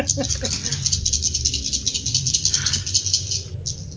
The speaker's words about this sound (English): So you're going to roll 7d6 and count your explosions.